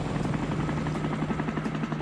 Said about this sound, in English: We're riding in a helicopter!